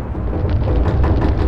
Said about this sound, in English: Oh, mercy, that thunder, it's shaking the studio. Nope, that's just my grumbly tummy.